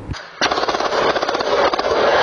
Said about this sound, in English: The loud barrage of gunfire from several guns, including a fully automatic weapon